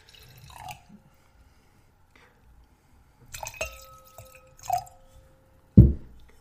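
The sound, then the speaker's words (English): Liquid splashes and trickles into a glass in a few short bursts, with bright drips and faint ringing, ending in a louder thud. No one speaks. “Go ahead, pour.”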